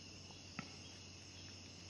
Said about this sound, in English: I'm just allowing the crickets to fill in that space for you. There's so many crickets, too.